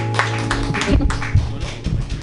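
An audience clapping wildly for a comedian at the Joke Workshop, a dense, steady wash of many hands with sharp bursts throughout, over a faint low hum of music underneath.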